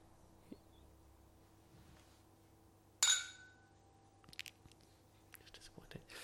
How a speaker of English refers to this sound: And so, the champagne flute, ladies and gentlemen. Mm. What are you expecting from this drink, this glass? I am expecting... Better clink than that. Let's try that again. Well, don't hold it by the... Hold it a bit further down, I guess.